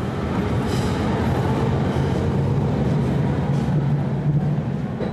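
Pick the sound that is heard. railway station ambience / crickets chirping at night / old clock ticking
railway station ambience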